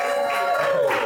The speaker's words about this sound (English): Y'all ever seen The Boondocks? Yeah. Can y'all make some noise for The Boondocks real quick?